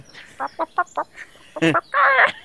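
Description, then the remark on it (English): Chickens cluck: a quick run of short, bright clucks followed by a louder, drawn-out squawk. There is no talking. “And as you say that, the sounds from the video I put chickens instead.”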